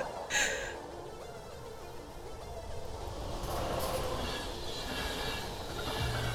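train rolling on rails

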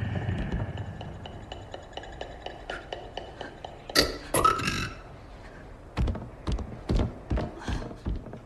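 belching

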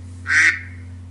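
duck quacking

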